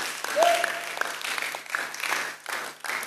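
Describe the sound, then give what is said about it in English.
A church audience claps together in a dense, continuous wash of hand claps with a loose rhythm, steady, with a brief voice or shout rising above it near the start. “If you are not clapping your hand, you are not in church.”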